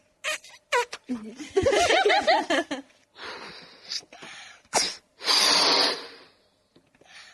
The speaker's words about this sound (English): What do we need to do first? The first thing you need to do is blow up the balloon.